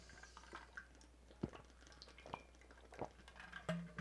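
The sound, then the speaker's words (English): Quiet sipping and swallowing of water: a few soft gulps and wet mouth clicks spaced over a few seconds, with faint liquid movement and no talking. “Let me take a little swig of water here.”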